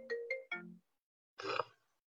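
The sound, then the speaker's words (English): A mobile phone ringtone chirps: three quick tonal notes, a short pause, then a buzzier burst, with no one talking over it. “hold on, let me just turn off my phone.”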